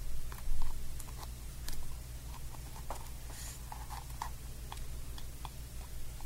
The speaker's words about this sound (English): she is essentially just using her fingernails to tap a brush, a hairbrush, and it makes that sound.